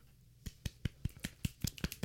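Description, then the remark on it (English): A quick run of about ten crisp finger snaps, sharp and evenly spaced roughly five per second, after a brief quiet start. No one speaks. “Oh yes, finger snaps.”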